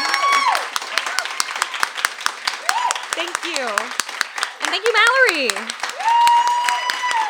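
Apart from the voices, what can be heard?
audience applause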